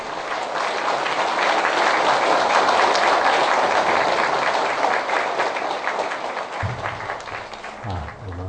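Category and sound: crowd, warm audience applause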